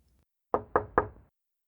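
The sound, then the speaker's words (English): Three quick, evenly spaced, polite knocks by a little mouse on a tiny wooden door, crisp, each with a short hollow ring before fading into silence. “And so the little mouse went to the tiny door and knocked politely.”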